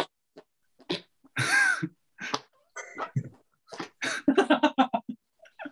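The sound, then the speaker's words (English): A run of squelchy armpit fart noises made by a person, short irregular bursts that grow quicker and denser toward the end, with a brief squealing vocal sound early on. “We are not sitting here in armpit farts, for fuck's sake.”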